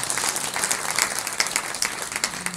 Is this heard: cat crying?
no